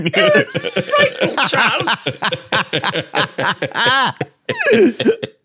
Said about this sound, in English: Woke up with a frightful cough this morning. Couldn't shift the blasted thing.